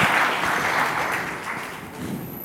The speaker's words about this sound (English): As the gentlemen come up on stage, a round of applause for this group, please. Thank you.